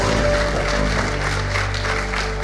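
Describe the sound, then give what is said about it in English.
Audience applause: a dense, steady wash of many hands clapping at once, holding an even level throughout, with a sustained low musical hum underneath. “Hey, can we give Steve, can still hear us, can we give Steve another big hand?”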